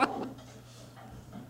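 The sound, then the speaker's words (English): A dog gives a couple of quick, sharp barks right at the start, then things settle into a low, steady background hum with faint rustling. “That dog is having so much fucking fun.”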